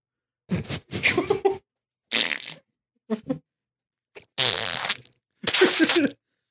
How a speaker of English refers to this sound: That sounds filthy. But just imagine how good my farts would sound.